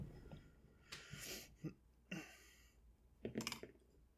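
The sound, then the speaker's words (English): A few quiet, scattered bursts of rattling clatter as dice are shaken and rolled, coming up 4, arriving in three short bouts with brief pauses between them and no talking. “Well, we've got 4 on the dice, but because I am going to defend my love, I get to roll with danger.”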